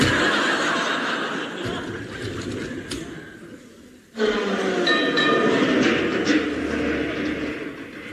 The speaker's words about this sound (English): it's a 49 tram. Then it's one of ours.